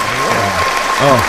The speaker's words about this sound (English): Wait for the people to stop applauding.